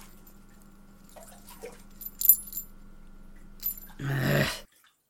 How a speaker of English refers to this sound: Can you at least take my collar off? What do you mean it's fine? The bells are annoying.